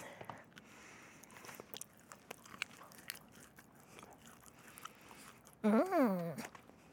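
Crunching and chewing of cookies, with irregular crisp crackles and soft mouth sounds throughout, followed near the end by a brief, louder voiced hum.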